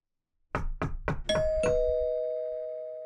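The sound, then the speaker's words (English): Three sharp, heavy knocks on a white PVC door of a three-bed semi-detached house, followed right away by a two-tone doorbell chime that rings out clearly and fades slowly. Loud, with no voices. “She sits bolt upright, suddenly awoken by a sharp ringing and loud knocking on her white PVC door.”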